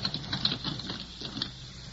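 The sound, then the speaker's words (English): Soft, quick pattering of an animal's paws as it pads off on four feet in pitch darkness, bounding to at least 15 feet away; a light irregular run of muffled taps at low volume with no voices. “Something padded off on 4 feet. God, smells like a cat.”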